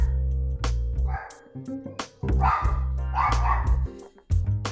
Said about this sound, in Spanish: están escuchando a mi perra Fiona